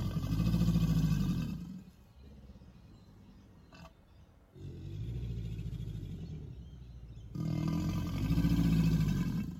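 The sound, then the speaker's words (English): An alligator's mating call: deep, rumbling, growl-like bellows, loud and sustained, one long bellow, a brief lull, then two more running together. No voices. “So that's what an alligator mating call sounds like.”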